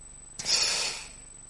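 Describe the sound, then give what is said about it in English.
One sharp, wet sniffle drawn in through the nose while crying, fairly loud, trailing off over about half a second in an otherwise quiet moment with no talking. “I'm crying about just the promises that God has for us.”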